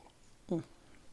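A single short gulp of water, fairly quiet, lasting a fraction of a second in otherwise near-silent surroundings with a faint hiss.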